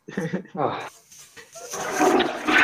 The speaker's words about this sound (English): You hear a flushing sound? Yeah, man.